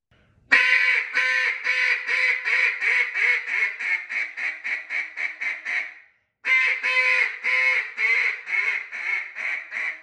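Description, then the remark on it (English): A duck call blown as a hail call in a long, loud series of quacks that start spaced and speed up as they fade, then a brief pause before a second strong run of quacks. “But so a hail call would start out and sound something like this.”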